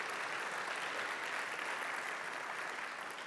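A church audience claps together in praise to the Lord, a dense, steady wash of many hands applauding at an even level throughout, with no voices standing out.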